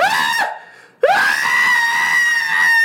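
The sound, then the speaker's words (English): A voice imitates a woman and a child screaming in the distance: a short high scream, a brief pause, then a longer drawn-out shriek, loud. “You just hear your kid and your wife screaming out in the distance.”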